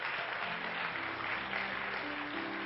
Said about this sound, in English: And I want to say what an honor it is to have our guests that are in the house of God today. Why don't all the home folks give our guests a good hand clap?